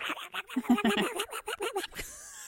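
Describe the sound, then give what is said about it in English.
Someone mimics Daffy Duck, blurting a fast, garbled stream of voiced syllables for about two seconds, fairly loud, before trailing off into quiet. “She will chew you out like Daffy Duck. That did sound like Daffy Duck.”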